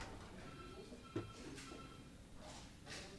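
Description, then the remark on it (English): Elevator doors slide with a soft mechanical swish, a brief clunk in between, then another quiet slide, all faint against a low hum in the background. “This is my floor.”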